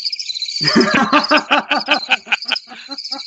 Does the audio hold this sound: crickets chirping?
yes